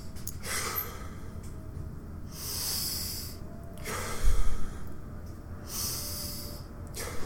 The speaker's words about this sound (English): I'll stop. Take 3 breaths.